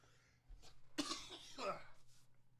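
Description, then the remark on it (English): A couple of harsh coughs from a person with COVID burst out in quick succession, loud and raspy, with a faint background hum and a brief breathy sound between them. “The COVID be flaring up when I be talking. I don't think I even have a cough drop.”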